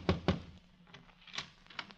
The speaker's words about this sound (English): And once again, the fates look down and laugh at Nicholas Arden as he tiptoes to the door of Ellen Arden, wife number one. The fates laugh, and Nick taps on the door.